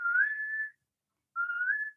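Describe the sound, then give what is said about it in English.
A person whistles two plaintive, slightly rising notes separated by a brief pause, imitating a golden plover's call; each note is clear, mid-high pitched and sustained, with no talking. “And I could hear golden plover going.”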